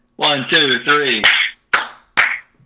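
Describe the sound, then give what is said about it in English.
A voice speaks a few short syllables, then two sharp, loud hand claps ring out about half a second apart, each a crisp snap with a quick fading tail, given as a 1, 2, 3 clap to sync and match the audio back up. “Yeah, just give me a 1, 2, 3 clap.”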